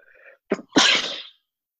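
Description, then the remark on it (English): A single loud sneeze caused by allergies: a brief sharp intake followed by a forceful explosive burst lasting about half a second, preceded by a faint bit of muffled breath or voice. “Bless you.”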